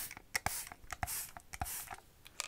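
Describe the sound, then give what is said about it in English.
A spray bottle spritzes hair in several quick, hissy bursts at an irregular pace, each a sharp crisp puff of mist with soft rustling between, and no voices. “All right, I'm just gonna spray it, okay?”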